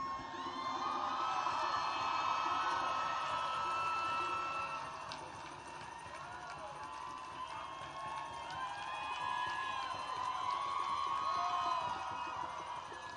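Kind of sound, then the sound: crowd, crowd applauding and cheering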